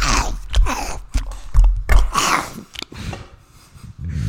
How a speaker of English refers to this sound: I'm just munching, bro. Keep munching into the mic. Make sure whoever's listening loves it.